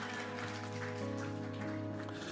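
audience applause

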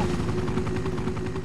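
helicopter taking off

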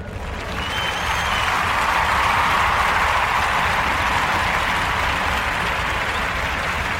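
crowd applause effect

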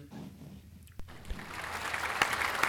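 applause

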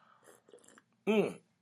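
slurping coffee

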